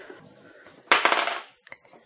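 Dice are rolled onto a table, a quick clatter of small hard objects tumbling onto a hard surface, a dense rattling burst that fades over half a second, followed by a couple of light ticks as they settle.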